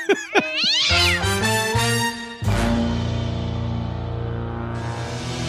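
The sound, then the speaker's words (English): A cat meows loudly and insistently, a drawn-out wavering yowl that rises and falls, then stretches into a long sustained caterwaul with no talking. “And I cannot wait to cook that cat.”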